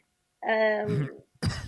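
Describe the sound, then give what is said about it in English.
A strained, voiced throat sound gives way to two harsh coughs in quick succession, loud and sudden, with a brief pause between them, from someone who choked on coffee. “why are you coughing”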